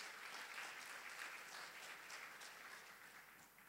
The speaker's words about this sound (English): I think you all should give yourself a clap for being faithful to the Lord.